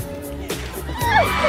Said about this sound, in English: So that cheer you just heard, that's how long it lasts, the thing you're about to talk about. And it's over.